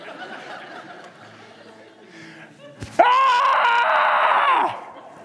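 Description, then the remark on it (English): A man lets out a loud, sustained scream for under two seconds, imitating a startled shriek, after a stretch of quieter vocal sounds, then cuts off abruptly. “And I let out a scream.”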